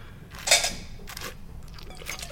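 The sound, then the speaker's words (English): Wet, hissing slurps of someone drawing air across a mouthful of dry, racy wine during a tasting demonstration. There is a loud first burst, then two quieter, rougher sucking sounds, with no talking. “And then you suck the air across.”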